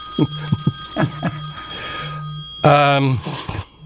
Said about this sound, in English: your phone's ringing. It is. It's crazy.